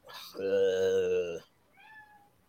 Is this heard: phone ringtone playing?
no